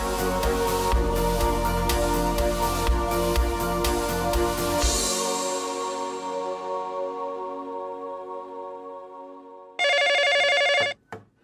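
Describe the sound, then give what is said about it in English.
Music fades out over several seconds, then a telephone suddenly rings once, loud, a bright electronic trill lasting about a second. “Shoot, I'm late, Joe thought after opening his eyes and clumsily reaching for the phone.”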